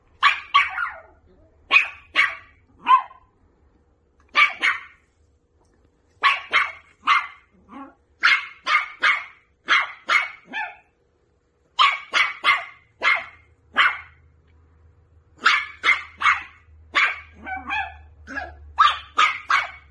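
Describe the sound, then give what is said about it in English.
A dog barks in quick, excited bursts at a squeaky toy it cannot figure out how to play with, loud and repeated in clusters with brief pauses between, a faint low hum running beneath parts of it. “Luca grabbed his and was squeaking it and throwing it all over and chasing it.”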